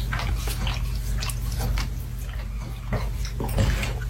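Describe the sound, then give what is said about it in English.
A dog licking itself: a run of wet, smacking licks in an uneven rhythm, moderately loud, over a steady low hum, with no talking. “But that's very annoying, though, when you're trying to get, like, work done or you're, like, working on your laptop and your dog's in the corner of the fucking room just licking themselves.”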